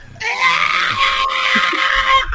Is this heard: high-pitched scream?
yes